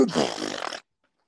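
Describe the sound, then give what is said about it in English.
A person imitates a monkey with one loud, harsh, roaring vocal burst lasting under a second, then abrupt silence. “Y'all, stop doing that monkey bullshit.”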